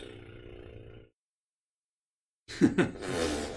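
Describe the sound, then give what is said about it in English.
A person blows a wet, sputtering mouth fart, a short rattling burst that trails into breathy noise, following a brief low droning sound and a pause of silence. “The mouth fart. Mouth fart sound.”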